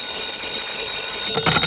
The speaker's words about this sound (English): Your number is ringing, Mr. Dollar.